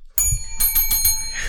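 A bright bell rings, struck several times in quick succession so its metallic tones overlap and shimmer; no one speaks.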